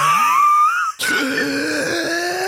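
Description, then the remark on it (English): A voice imitates a ghostly wail, as of Casper the ghost coming out, drawing out a wavering, rising moan, then breaking after a brief dip into a sustained, breathy howl that carries on steadily and fairly loud. “Casper the ghost comes out.”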